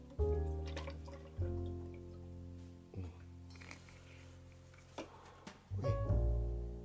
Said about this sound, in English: Pour the Jackson Morgan. The liqueur. Pour that up in there.